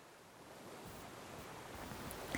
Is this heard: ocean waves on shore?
yes